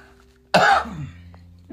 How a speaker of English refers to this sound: It was just a cough. I don't have corona, I promise.